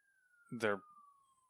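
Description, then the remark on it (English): A police siren wails steadily, its pitch sliding gently lower as it passes, while a short burst of a person's voice briefly cuts in partway through. “You want to know how much I've lost my mind until I finally listen to the ambulance go by? Never mind, that's a cop.”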